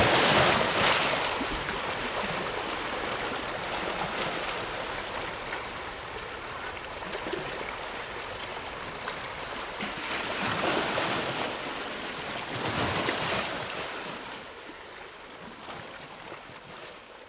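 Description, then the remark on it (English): Waves at St. Margaret's Bay, where the Atlantic Ocean meets the North Sea, sweep over an underwater microphone: broad, hissing washes of water that swell and recede in slow surges, with a muffled rumble beneath and no voices. “Heard the sound of waves sweeping over my underwater microphone.”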